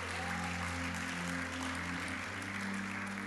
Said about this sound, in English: If you prayed that prayer, congratulations. Can we just give a round of applause for anyone?